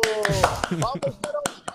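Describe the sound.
An audience claps in a steady rhythm, about eight sharp, evenly spaced claps in under two seconds, with voices calling out over and between the beats.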